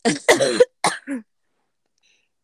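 A person coughs several times in quick, harsh bursts, with a brief throat-clearing sound, then silence before another short cough at the end.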